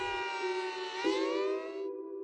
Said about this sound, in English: When I was growing up in the American Midwest in the 1980s, the local fire department spun up the air raid siren every Saturday at noon, which left me very uneasy.